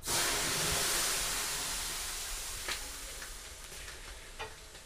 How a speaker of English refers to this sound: You start sweating slightly and then you throw a modest amount of water on the stones, which I'm now going to do. With your permission, of course.